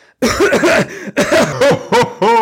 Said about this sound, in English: Whoa, that really is some cough.